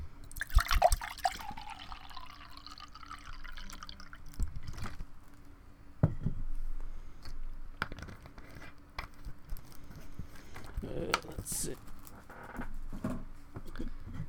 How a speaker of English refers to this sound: Welcome to Pouring ASMR.